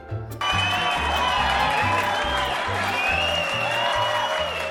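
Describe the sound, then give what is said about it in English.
A crowd of fans bursts into loud, sustained cheering and applause after a brief quiet start, with a steady, rhythmic low thumping running underneath the roar. “And the sound of our cheering fans means it's time for listener comments.”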